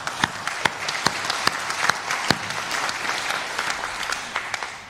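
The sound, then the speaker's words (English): A church audience clapping their hands together in praise of God during a service, sustained, lively applause, dense and steady throughout with a few sharper claps standing out, and no one speaking. “I'm going to give him a clap off. Like, why don't you just join me? Just clap for our Lord.”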